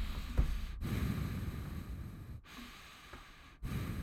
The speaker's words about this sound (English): Those are ocean waves.